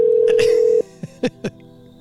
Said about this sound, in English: Oh, it became a real phone call now. How many more rings do we give them?